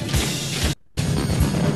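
A loud percussive stomping and banging performance of the show Stomp, dense crashing hits pulsing in a steady rhythm, cutting out for a brief moment of silence before pounding on again.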